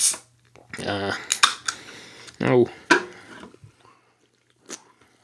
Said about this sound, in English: And then imagine if you open up a can of energy drink like this.